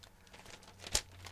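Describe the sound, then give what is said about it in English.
A sheet of paper is turned: soft crinkling rustles build to one quick, crisp flap near the end, over a faint low hum with no talking. “All right, so fucking, I gotta turn my paper.”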